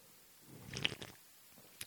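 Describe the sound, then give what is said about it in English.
A short slurp of coffee, a wet sucking sip lasting about half a second, followed by quiet and a faint click near the end. “Excuse me, as I slurp my coffee.”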